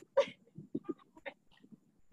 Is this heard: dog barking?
yes